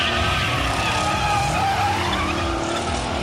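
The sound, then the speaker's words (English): Race car engines roar at full throttle as tires squeal and skid at a green-flag race start, with the 4 car, the Doris Day Commemorative Dragster, rocketing out to first position. A dense, loud, continuous wall of motor noise and screeching rubber with no pauses. “the 4 car, the Doris Day Commemorative Dragster, has rocketed out to the number one position.”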